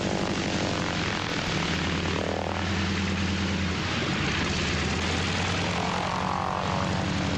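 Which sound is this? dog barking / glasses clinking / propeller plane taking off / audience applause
propeller plane taking off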